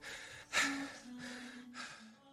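Three heavy, gasping breaths in quick succession, fairly loud, with a slight voiced groan in them, like someone panting hard after a treadmill workout.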